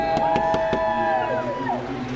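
Four quick, sharp bangs on a window in an even rhythm during a motor race, over a loud, steady mechanical whine whose pitch slides downward after the knocking stops, with a low background murmur.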